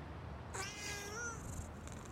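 A single drawn-out cat meow lasting about a second, its pitch wavering and sliding down at the end, heard alone and fairly soft over a steady low background hiss.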